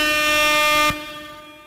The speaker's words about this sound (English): Could I please get the cut your hair air horn? Yes, you can.